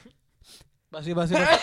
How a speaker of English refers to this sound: Hold on, I got to sneeze.